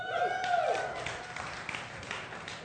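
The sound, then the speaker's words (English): A church audience cheers and claps as the offering is announced, a steady wash of applause with a few high whoops and whistles rising over it at the start, then dense clapping carrying on at an even level. “And you guys cheer for that, and that's great and exciting and all”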